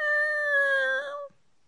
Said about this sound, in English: Oh, a lion. Fisher Price! It's a lion kitten.